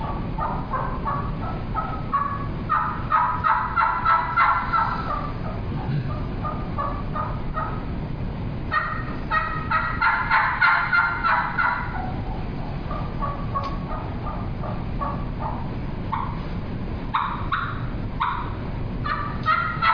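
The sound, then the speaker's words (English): An imitated wild turkey hen's soft tree call, like a hen waking up: clusters of quiet, nasal yelps and clucks in uneven bursts, alone, with a low background rumble and no talking. “I'll do like a tree call, like a hen waking up, and then getting allowed to locate the others where they're at, maybe in the area.”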